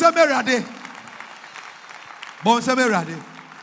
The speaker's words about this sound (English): Are you clapping your hands for Jesus Christ? Oh, go ahead. Clap your hand for the Lord.